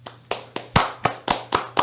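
A steady run of about eight sharp hand claps at an even, brisk pace, close and fairly loud, sounding like a single person clapping rather than a crowd, with no talking.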